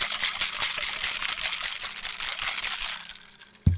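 A cocktail shaker holding a hurricane cocktail with grenadine syrup is shaken hard, ice rattling in a fast, steady rhythm for about three seconds before it fades and ends with a single dull thump.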